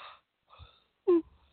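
yawn

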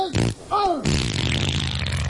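fart

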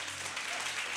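audience clapping

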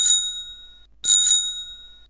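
bicycle bell ringing

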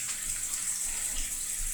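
cold water running

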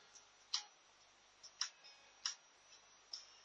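clock ticking countdown effect

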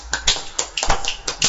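hand clapping

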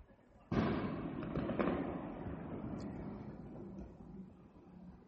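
fireworks going off

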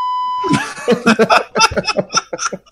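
beep sound effect

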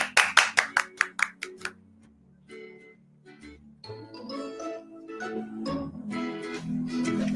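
hands clapping

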